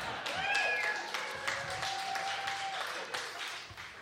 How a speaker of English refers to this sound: So don't you want to just give an absolute applause to Mo?